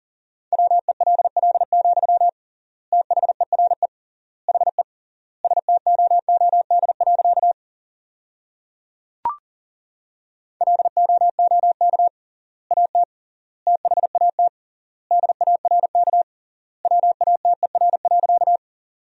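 Rapid Morse code at 40 words per minute, sending sentences built from the top 500 words with triple word spacing: a steady mid-pitched tone keyed in fast dits and dahs, grouped into bursts with wide gaps between words and a brief click partway through.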